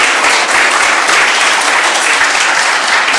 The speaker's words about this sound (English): Yes, you can applaud that.